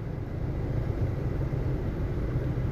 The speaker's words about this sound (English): You can probably hear the wind coming out of my vent. I'm sorry. I'm in my car. I'm driving.